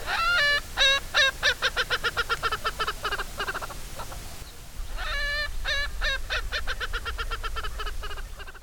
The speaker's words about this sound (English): If you hear a loud laughing cackle, but there's no people around, there's a good chance there's an Urkel's Franklin nearby.